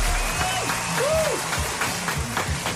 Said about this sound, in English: But listen, we're still cheering loud for you, sir. Well done.